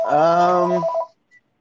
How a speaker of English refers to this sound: Is that the fucking phone ringing at a Pizza Hut, for fuck's sake?